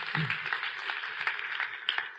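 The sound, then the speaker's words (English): A church audience applauds the church board, with many overlapping hand claps forming a dense, even wash of sound that stays at a moderate level for a couple of seconds, with no voices. “Give them all a great big applause.”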